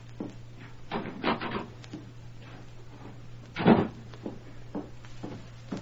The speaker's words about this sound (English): It was after dark when Emma Bailey, tight-lipped and pale, let herself in the rear door of her ranch home, closed it softly behind her, then walked into the parlor where her mother and father were sitting.